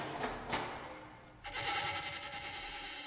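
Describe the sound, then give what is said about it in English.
Several goats bleat in overlapping, wavering cries, a couple of short calls up front and then a longer, steady chorus of bleating, with no voices present. “Goats, goats everywhere, and not a mind to think.”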